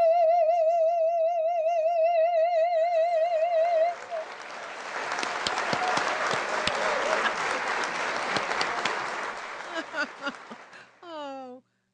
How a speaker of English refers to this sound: Thank you. Instant applause.